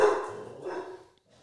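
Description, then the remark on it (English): A dog lets out a loud bark that runs into a second, drawn-out yelp before trailing off into near silence, with no talking over it. “We got to learn how to record podcasts and keep him quiet.”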